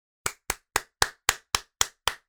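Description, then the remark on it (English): Steady clapping: about nine sharp, loud claps at an even, brisk rhythm, each with a short ringing decay, with no voices. “Round of applause, Netflix. I don't know what the fuck that's going to do to the audio, but fuck it.”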